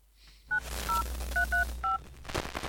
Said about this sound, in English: The line crackled and buzzed. Jack listened to the broken ringing, trying to come up with the answers to questions he knew Amanda would be piling onto him about what they were doing, why the phone was not working, and perhaps where they were.